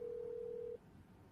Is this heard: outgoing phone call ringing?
yes